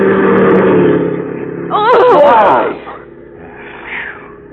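A car engine drones loudly, then brakes squeal in a sharp, wavering screech for about a second before the sound drops to a quieter rumble and fades.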